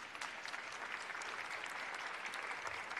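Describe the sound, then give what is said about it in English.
Sustained applause from an audience for the Dream Keepers Initiative, a dense steady patter of many hands clapping at an even loudness for the full three seconds, with no voices standing out. “Clap it up for the Dream Keepers Initiative.”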